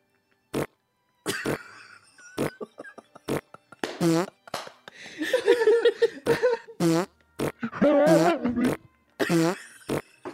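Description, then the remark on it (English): A rapid string of loud farts let out with every step while bolting out a door, short sharp bursts followed by longer buzzing, sputtering ones, repeating in an uneven rhythm with brief gaps between them. “I started to bolt out the door, but not before leaving a trail of loud farts with every step.”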